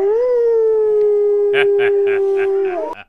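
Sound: wolf howling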